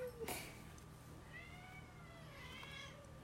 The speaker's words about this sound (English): We got a cat fight here. The kitties are fighting. Loki's got top control here. He's got the mount. Looking to submit Max here.